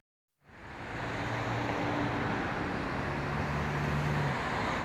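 A steady, continuous roar of distant traffic on a main road, a broad wash of noise with a low engine hum running underneath, constant in level with no single vehicle standing out.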